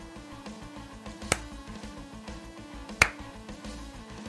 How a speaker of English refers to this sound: The slow clap just builds to an applause as the bounty hunters and the kobolds alike are now cheering and fully on Val's side.